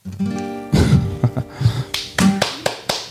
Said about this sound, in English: He's clapping. That's what counts.